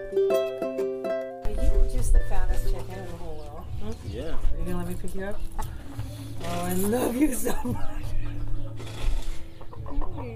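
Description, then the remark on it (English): Chickens cluck in a busy, continuous stream of short squawks and warbling calls, preceded by a brief steady musical tone at the very start. “See, I like chickens, but I do not like petting them.”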